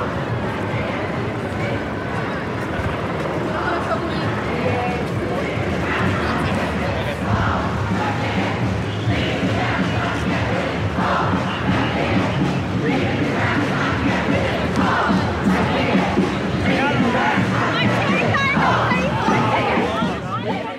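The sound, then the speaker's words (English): A large protest crowd roars with continuous shouting and overlapping voices, a dense, loud wall of yelling and chanting that stays steady for the whole stretch. “Because the main protest is coming this way and you'll get crushed and you'll get trampled.”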